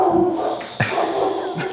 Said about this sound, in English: Got dogs barking. I'm glad the dog has something to contribute.